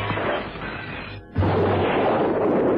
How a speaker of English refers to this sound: On the stroke of 8, Holmes lobbed the parcel at the window. The explosion rocked the room.